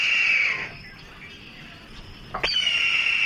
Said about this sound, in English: This bird is a red-tailed hawk. The red-tailed hawk is a resident New Jersey hawk. We also have a number of them that migrate through.